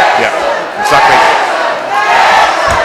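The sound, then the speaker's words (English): A football crowd at a Wrexham match roars steadily as a corner is taken, a dense wall of massed voices with loud, sustained shouting and chanting that swells slightly in waves, with no single voice standing out. “So corner, the crowd making noise.”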